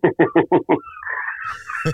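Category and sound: bird, seagulls calling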